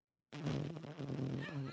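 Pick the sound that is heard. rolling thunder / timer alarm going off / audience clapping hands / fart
fart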